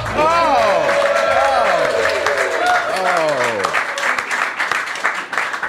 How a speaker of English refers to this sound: You're just clapping because we called you brilliant. I almost forgot to say that.